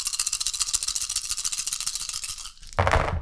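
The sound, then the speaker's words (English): Six dice rattle in a fast, steady shake for a couple of seconds during a game, then spill out in a sudden, louder clatter that briefly rolls to a stop. No one speaks. “He gets to roll 6 dice, and he only needs 3 hits.”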